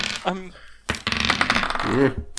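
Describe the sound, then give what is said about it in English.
A quick flurry of role-playing game dice clattering and tumbling across a desk as people roll for initiative, with sharp rattling clicks, while people talk and murmur alongside. “What does it say about us that we all had our eight. Dungeons and Dragons dice?”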